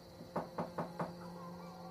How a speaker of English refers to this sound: You knock on the door.